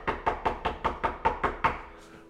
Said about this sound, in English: And so Greta put on her shoes one Saturday morning early. She walked over to the house and she knocked on that door.